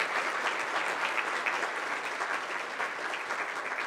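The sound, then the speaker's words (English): An audience at a Baptist church applauds as a hand clap of praise to the Lord, a dense wash of many hands clapping together at an even, sustained level throughout, with no voices rising above it. “Let's just give the Lord a hand clap of praise for what He's done in your life.”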